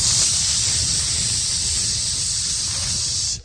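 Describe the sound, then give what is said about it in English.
An aerosol deodorizer spray can hisses steadily for about three seconds, bright, with a low rumbling underneath, then cuts off abruptly. No voices are heard. “Now, there are some deodorizers that you can get, that you can buy from Walmart or somewhere, and you can spray.”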